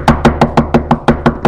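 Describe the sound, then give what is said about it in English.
A quick, steady run of about nine sharp knocks on the locked door of a house, evenly spaced and fairly loud, with no voices. “In about 15 minutes, the father on the inside of the house heard the door.”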